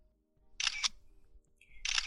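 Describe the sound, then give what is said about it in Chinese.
Two crisp phone camera shutter snaps as a man photographs a woman's feet and high heels, each a short bright burst, with a brief high electronic tone just before the second. No one speaks. “大哥，你拍好了吗？好，你拍好了就行。”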